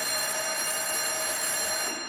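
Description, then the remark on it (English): An alarm bell rings continuously with a harsh, metallic clatter, holding a steady high, buzzing tone at constant loudness throughout, with no voices present. “That adrenaline rush when the bell rings, and you can tell by the dispatcher's voice that, hey, you got a real thing going here.”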